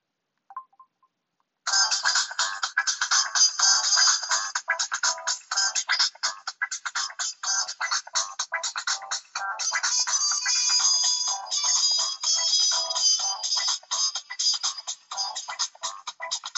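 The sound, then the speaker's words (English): A phone ringtone plays loudly, a bright, busy electronic melody that pulses with quick rhythmic breaks for about fifteen seconds after a brief opening beep. No one speaks. “By the way, guys, this is my most least favorite ringtone, and this one is my favorite.”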